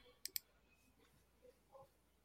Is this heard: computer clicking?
yes